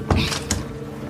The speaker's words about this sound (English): She opens a secret door. Whoa. It's a cellar.